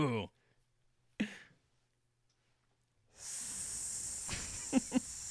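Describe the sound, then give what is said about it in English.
A snake hisses in a long, steady, fairly loud hiss that rises after a brief quiet and continues to the end, broken by a couple of short sharp bursts. Brief vocal sounds come first. “I reached into this box and I selected snake.”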